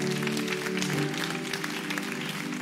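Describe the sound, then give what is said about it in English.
A church audience claps steadily for a man who raised his hand, the clapping going on for the whole stretch, a dense wash of many hands at an even loudness, with sustained low musical tones humming underneath. “Clap your hands. Could you clap for him?”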